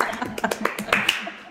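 A short burst of quick, fairly loud hand claps given as a round of applause, roughly eight sharp claps in an uneven rhythm that trail off within a second and a half.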